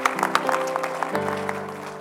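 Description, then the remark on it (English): An audience claps steadily in praise of God after a prayer, as people take their seats, dense overlapping hand claps filling the space while sustained organ chords hold underneath and shift to a lower note partway through. “Give Him another hand clap of praise as you take your seat.”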